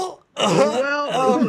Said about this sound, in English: Well, I'm trying to cough.